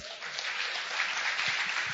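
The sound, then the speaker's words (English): A church audience claps together for the Lord in a dense, steady wash of applause that holds at an even level for the full two seconds, with no voices standing out. “Yeah, give the Lord a clap.”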